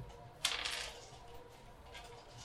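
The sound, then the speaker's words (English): Dice land with a sharp clatter and rattle briefly on a hard surface before settling, followed by a few faint taps over a low background hum. “Probably throw me back that fake dice and take a real dice.”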